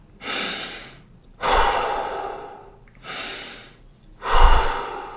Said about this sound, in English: … began the instruction of deep breathing. In through the nose, out through the mouth.